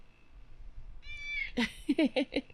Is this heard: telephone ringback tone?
no